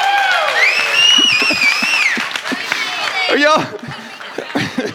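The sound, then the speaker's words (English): A crowd claps steadily at the conclusion of a sermon series while high, sliding whistles and a few cheering, laughing voices ring out over the applause, which thins slightly toward the end. “Are y'all clapping because it was a good series or clapping because it's over?”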